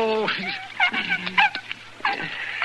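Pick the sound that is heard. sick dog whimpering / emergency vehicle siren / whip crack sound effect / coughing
sick dog whimpering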